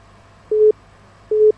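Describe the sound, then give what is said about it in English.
A phone busy tone after a dropped call: two steady, evenly spaced beeps at a moderate level against a faint low hum, with no one speaking. “Okay, I think we lost that call.”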